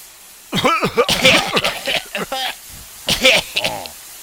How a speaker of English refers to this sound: Suddenly, a tear gas bomb.